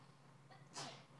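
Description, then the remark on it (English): A single sharp sneeze bursts out, a quick hissing blast over a low steady hum, fairly faint, with no talking around it. “Bless you.”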